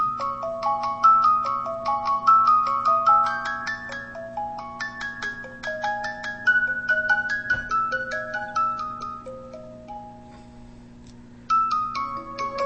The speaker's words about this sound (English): And then if you double tap it again, it stops it. That's a very pretty ringtone.